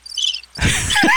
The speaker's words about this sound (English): No, you should hit the crickets. A little bit of crickets. Yeah. They should have their own little crickets.